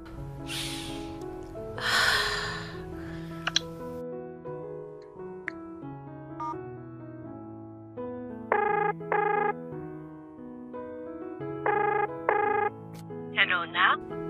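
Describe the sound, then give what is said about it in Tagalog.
A cellphone rings as a call is placed to a mother, short bright tonal bursts repeating in pairs, clear over soft background music, with breathy vocal sounds near the start. “Oy, bakit hindi yung patawagan para makapag-umpisa na tayo?”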